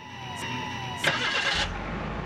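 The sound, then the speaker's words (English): A car engine cranks over with a short burst of noise, then catches and settles into a low, steady idle rumble, with no voices, as the driver gets in to drive away home. “And I got in my car and I drove away and I drove home.”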